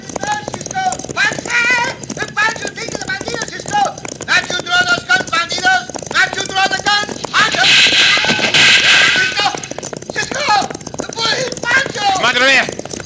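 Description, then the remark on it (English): Loud galloping hooves of a stampeding cattle herd thunder steadily throughout, with a harsh noisy surge midway. Excited voices shout over the pounding rush. “Oh, he has fallen from his horse, right in front of that stampede.”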